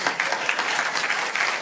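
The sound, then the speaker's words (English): Steady audience applause, a dense crackle of many hands clapping at an even, sustained level with no gaps and no one speaking over it. “I don't know why you're applauding if you can't care about it.”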